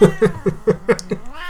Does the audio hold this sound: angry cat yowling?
yes